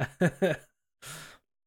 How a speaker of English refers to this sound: You've said the word yawning so much that I'm now yawning. You fucking cunt. You just made me yawn.